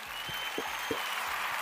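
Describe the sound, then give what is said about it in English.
A canned applause effect: a steady wash of many hands clapping, bright and hissy, held at an even level for its brief duration with a few sharper claps poking through. “Can you press that? The clap reaction thing you just did.”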